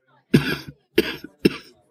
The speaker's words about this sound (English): Sorry, bit of a nasty cough I've got there.